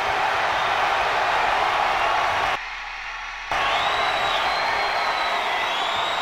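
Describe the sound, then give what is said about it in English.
A large crowd at a WCW wrestling event roars and cheers continuously, a dense wall of noise broken by a brief near-silent gap before the loud cheering resumes with some whistles and whoops. “The crowd cheers.”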